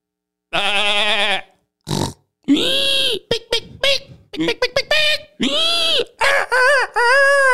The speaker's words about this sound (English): Hey there, is that a pig?